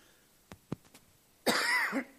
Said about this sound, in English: I probably will cough a lot today. I've had a sore throat.